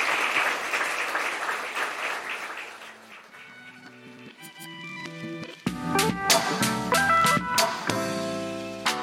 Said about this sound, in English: But yeah, can I get one more big round of applause for our panellists?